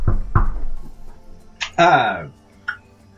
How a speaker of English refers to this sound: Anyway, he knocks on Rick's door.